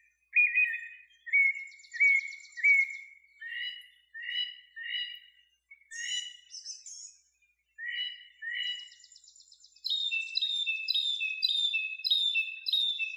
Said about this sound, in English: I just think that mockingbird call is so beautiful.